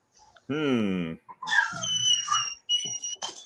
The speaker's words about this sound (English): Quit it. That's not one of my dogs